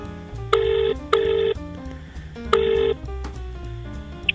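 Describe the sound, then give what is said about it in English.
An outgoing phone call rings out with no answer: a bright electronic ringback tone pulses in short paired bursts, repeating clearly over soft background music, with no voices. “If he's not picking up his phone, he works at a bar.”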